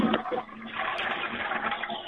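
A toilet flushes close by, a steady rushing swirl of water that fills the whole two seconds without pause, fairly loud and continuous.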